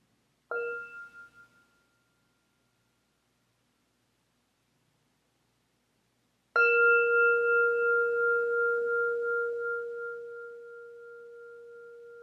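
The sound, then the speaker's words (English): A meditation bell is struck twice to close a session: a first strike that fades quickly, then after a pause a fuller, clear ring that hums and resonates for several seconds, alone. “We'll close with the sound of the bell.”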